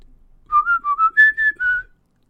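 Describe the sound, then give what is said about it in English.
A short whistled six-tone 'Ally Ally Oxen Free' tune played through speakers, about six clear notes rising slightly midway and ending on a held tone, heard alone, fairly loud, with no talking. “Ali Ali Oxen Free, whistled through the speakers”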